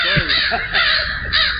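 Loud, close crows caw repeatedly in harsh, raspy bursts, three prominent calls spaced roughly half a second apart over a busy, noisy background.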